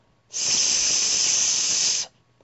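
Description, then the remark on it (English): A single steady hiss made by a voice on the letter S imitating a snake, breathed out through the mouth as a breathing exercise, a sustained S sound held evenly for under two seconds, fairly loud, starting and stopping cleanly. “And we're going to do it on the letter S, like a hissing snake.”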